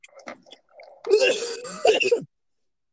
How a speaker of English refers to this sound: You know, your cough sounds really bad. I do think you should go to a doctor, get that checked out.